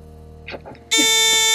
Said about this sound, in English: Because you buzzed in too soon.